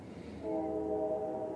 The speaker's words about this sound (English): That train thanks you. Guys, if you could, find out who owns that train company and let them know I teach every day at 11 and to tell the trains to hold up till I'm done.